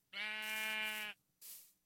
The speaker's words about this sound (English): Sheep. What is that?